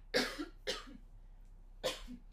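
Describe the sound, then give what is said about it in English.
Three harsh coughs from one person, the first two in quick succession and a third after a short pause, with no talking. “Sorry, I'm gonna cough again.”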